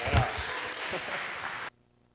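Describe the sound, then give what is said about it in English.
An audience at a church service applauds the scripture reader with a dense, steady patter of clapping that lasts under two seconds and then cuts off abruptly into near silence. “Why don't we give him another applause for that?”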